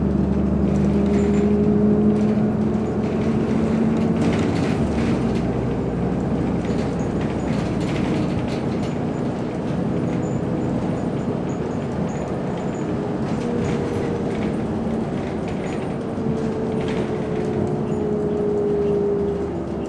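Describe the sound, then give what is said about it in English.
Steady low engine rumble and road noise from inside a moving bus at 8:29 a.m., continuous and fairly loud, with faint whining tones rising and falling over the drone and no talking. “All right, systematically monitoring while the bus is traveling.”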